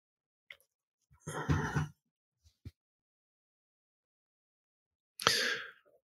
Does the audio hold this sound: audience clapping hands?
no